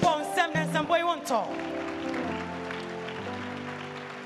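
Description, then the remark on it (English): A crowd claps steadily for a few seconds after a short burst of singing or music, applauding two singers; the applause is dense and moderate in volume with sustained tones lingering underneath. “why don't you put your hands together for Sister Linda and Sister Nancy?”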